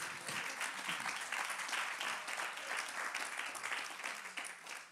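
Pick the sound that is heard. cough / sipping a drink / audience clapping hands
audience clapping hands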